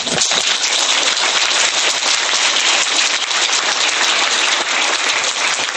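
A celebratory sound effect of dense, loud applause marking a milestone of 5,000 downloads, many hands clapping in a steady crackling roar that holds at full strength for about six seconds without pause or voices.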